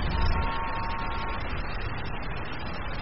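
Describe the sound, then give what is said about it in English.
A single sustained, buzzy horn honk lasting just over a second, sounding thin and toy-like against a steady background hiss that continues after it stops. “And this is the honker.”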